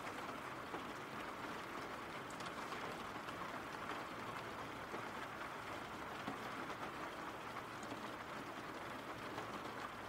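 Steady rain pours without a break, a dense, even hiss of countless drops with a faint low rumble underneath. No voices or other distinct sounds rise above it.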